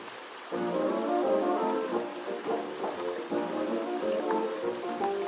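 Soft, steady rain patters continuously at night, with muffled oldies music playing faintly from another room beneath it.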